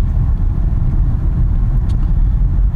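Steady low rumble of a car in motion from San Diego to Los Angeles, in the Irvine area on June 15, 2017, heard from inside the cabin, with continuous road and engine noise filling the low end and no voices.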